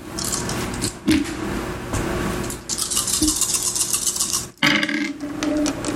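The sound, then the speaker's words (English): Dice are rolled, with two more dice added to the roll, rattling and clattering in a steady, busy stream of hard little clicks, with two brief pauses before the rolling picks up again. No one speaks. “So add two more dice.”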